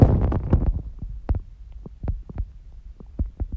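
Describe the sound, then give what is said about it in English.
A heartbeat thumps steadily in muffled, low pulses, picked up by a microphone worn on the arm, with a faint hum and rustle beneath it and no talking. “My microphone is catching my heartbeat.”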